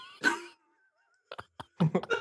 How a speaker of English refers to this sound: You know that bark is going somewhere funny. Like, I might even add it to the board.